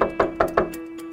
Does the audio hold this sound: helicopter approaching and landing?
no